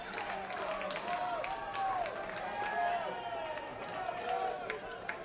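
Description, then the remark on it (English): A ballpark crowd cheers steadily for batter Nuzzo, a dense roar of many voices with scattered shouts and whoops rising above it, holding at a fairly loud, even level. “Crowd gets behind Nuzzo.”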